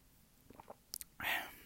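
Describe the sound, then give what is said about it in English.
A few faint wet clicks from the lips, then a short airy slurp as someone sips iced coffee through a straw, quiet, with no talking. “So, if you hear me sipping, it's just me having my iced coffee.”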